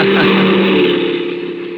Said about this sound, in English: swung into the cab and fired up the big diesel.